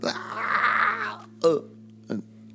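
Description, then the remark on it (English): A creature's harsh, sustained screech, coming from within a jail, lasts about a second, then two short, low guttural roaring bursts follow, all over a steady faint hum. “this screech come from within. Followed by a roar.”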